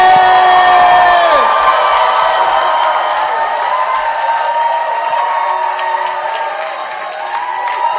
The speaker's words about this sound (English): If you're excited as I am, make some Holy Ghost noise. Clap your hands as we welcome to the pulpit